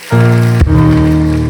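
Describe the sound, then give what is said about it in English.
A church audience claps hands together as a hand clap of praise to the Lord, in a dense, rain-like wash of applause, loud and steady, layered over sustained organ-like chords that shift once partway through. “Give the Lord a hand clap of praise and take your seats today.”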